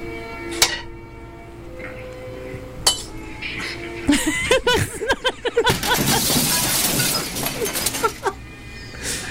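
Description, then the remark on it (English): Glass clinks sharply a couple of times, then a big crash of breaking and shattering glass spills into a long, bright rain of tinkling shards and debris, loud. “It's a 6 minute shootout. All break it, you know, consisting of broken glass.”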